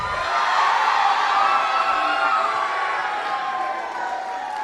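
A crowd at a Chi Alpha gathering cheers loudly and steadily, a dense wash of shouts, whoops and excited voices that holds at a high level throughout, easing only slightly toward the end.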